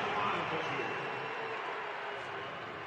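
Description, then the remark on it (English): An arena crowd at a Utah Jazz versus Golden State Warriors basketball game cheers in a steady, dense roar that holds for about three seconds, a broad wash of many voices with no single shout standing out. The cheer follows a high pass from Joe Ingles to Gobert at the rim. “Crowd's loving it.”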